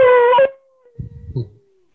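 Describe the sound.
A person imitates an animal howl: a loud, sustained vocal tone cut off after half a second, trailing faintly downward as another voice briefly talks over it.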